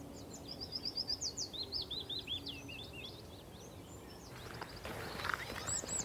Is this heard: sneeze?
no